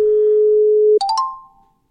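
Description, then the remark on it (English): A steady electronic ringing tone of an outgoing phone call holds for about a second, then cuts off into a quick burst of bright chiming beeps and fading tones, as if a call is connecting. No one speaks. “So should we give Cullen a call?”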